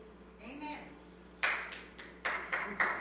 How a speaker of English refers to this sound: Amen. See, we're getting better. We're getting claps now. Okay, awesome.